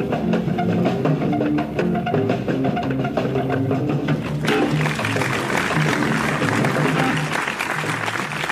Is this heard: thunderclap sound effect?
no